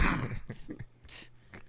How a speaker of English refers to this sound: Clearing his throat again. On the wrong pipe.